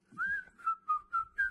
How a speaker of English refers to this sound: We're like, whistle while you work.